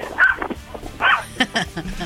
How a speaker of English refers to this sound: That's a small Yorkie speaking to Animal Radio.